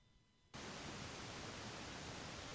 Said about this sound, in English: All I'm getting is static, mate. I get static when you're coming in. So I can tell you're connecting, but it's a worse wind tunnel than usual.